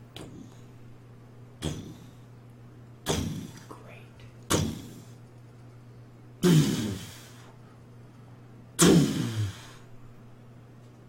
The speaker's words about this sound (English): Something is beating up against the door, and you all wake up and hear this. Is the door gonna hold?